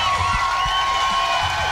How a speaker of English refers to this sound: Yeah, they're pumped up today, man. Yeah, man. That applause.